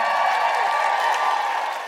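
Steady audience applause, a dense wash of many hands clapping at once, holding at an even, fairly loud level for the full two seconds with no voices standing out.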